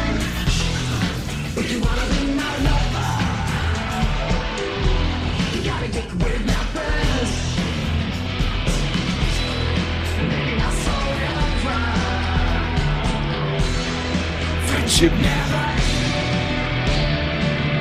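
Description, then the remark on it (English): A loud, dense, machine-generated industrial rock track plays continuously, with a chaotic, distorted synth-guitar part grinding over heavy drums and what sounds like shouted vocals throughout. “Like, it knows what the weird chaotic synth guitar part is”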